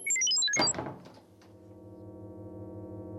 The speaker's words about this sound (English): Okay. I'll close the door behind us.